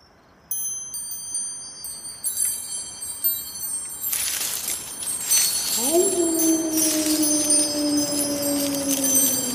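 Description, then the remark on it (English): Wind chimes ring out with bright, high, overlapping tones struck one after another, growing into a shimmering cluster; a steady low hum joins partway through and lingers beneath them. “Oh, listen to those wind chimes.”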